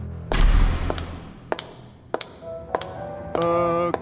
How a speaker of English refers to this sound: That was a gunshot.